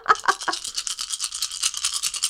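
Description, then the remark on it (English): Several damage dice are rolled a second time in a game: three quick, hard clacks, then a steady, rapid clatter of dice tumbling and rattling together for about two seconds, with no talking. “So I roll my damage dice twice?”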